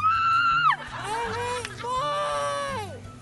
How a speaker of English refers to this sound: Hey, do you want to scream into a pillow? Scream into it right now.